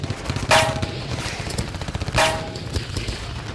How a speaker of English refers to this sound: The sound of rubber burning and gunshots filled the night.